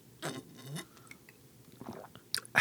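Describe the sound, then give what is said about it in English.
A couple of quick, soft slurping sips of a drink, then a pause and a few small wet clicks and a brief sharper sound at the end. No one speaks. “That was a smug sip right there.”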